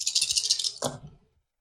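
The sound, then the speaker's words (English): A handful of six six-sided dice, rolled as 2d6 damage rolls in a tabletop game, rattles rapidly for most of a second in a bright, clicking clatter, then lands with a brief tumble and falls silent. “So I'm just going to grab 6 dice.”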